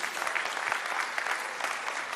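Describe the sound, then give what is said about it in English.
A crowd applauds steadily for a man who walked 100 kilometers around Bornholm to raise money for A21, many hands clapping at once in a dense, continuous wash of sound with no voices standing out, holding an even loudness throughout. “Now you can give him a clap.”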